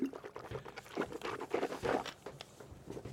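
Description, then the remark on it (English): Liquid sounds, like water being gulped or sloshed from a bottle, come in irregular wet bursts for a few seconds with no talking. “Sure am glad I brought some water.”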